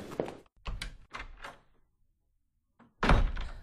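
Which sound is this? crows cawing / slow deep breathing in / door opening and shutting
door opening and shutting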